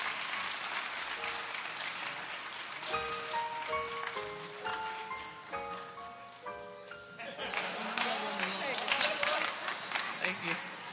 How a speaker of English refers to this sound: Come on, let's give her a hand clap.